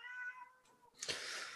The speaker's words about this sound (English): Sorry, my cat is meowing.